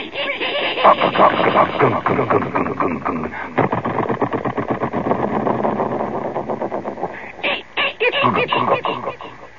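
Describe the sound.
A voice imitates a humming, amplified refrigerator with echo: a steady buzzing drone with rapid pulsing texture, then a few choppy bursts near the end like the motor clunking off.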